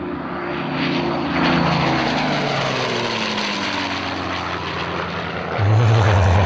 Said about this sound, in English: Yes, that's the famous restored mosquito first flew September 2012. We reported on that quite a bit down here when it first flew.